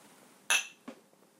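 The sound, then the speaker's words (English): A bright, ringing clink of glasses touching in a toast, followed a moment later by a softer knock, with no voices. “And on that note, cheers.”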